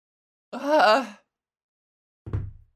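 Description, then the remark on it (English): A drawn-out, voiced moaning exhale into the microphone, then after a pause a short, bassy puff of breath thumping into the mic. No one speaks. “I breathe, but still it's bassy as shit, and I don't know what to do about that.”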